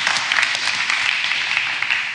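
Steady applause from an audience for a person who asked a question, a dense wash of many hands clapping at an even, fairly loud level for a couple of seconds with no voices over it.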